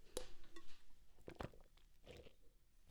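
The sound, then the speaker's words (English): Someone drinking water, with a few wet gulps and swallowing clicks spaced irregularly over a quiet background, no talking. “I have to drink some water.”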